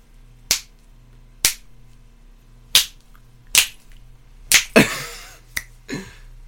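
Loud, crisp finger snaps, about eight of them at uneven intervals, a couple landing in quick succession near the end with a brief rush of noise, over a faint steady hum.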